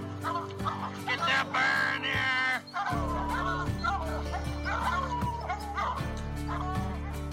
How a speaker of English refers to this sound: Good dog, get that bird.